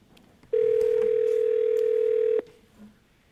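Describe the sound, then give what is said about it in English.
A steady telephone dial tone drones loudly for about two seconds as someone tries to conference a caller into a call, then cuts off abruptly, leaving faint background noise behind. “All right, so how do I'm trying to conference this caller in. Let me try again.”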